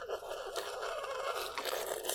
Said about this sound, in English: That's us sipping our tea. Oh, it's not very good.